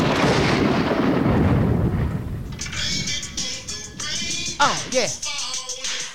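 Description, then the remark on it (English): A deep, loud roll of thunder rumbles for a couple of seconds, then gives way to the steady hiss of heavy rain with scattered crackling drops and a few brief higher-pitched sounds. “First rain delay ever in the history of the Wreak Havoc podcast.”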